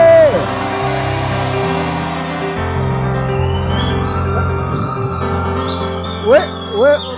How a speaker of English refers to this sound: The Bible says in his temple, everyone shouts glory. I said, somebody shouts glory.